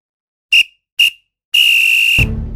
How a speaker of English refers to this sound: Well, there goes the final whistle, and that brings this week's podcast to an end.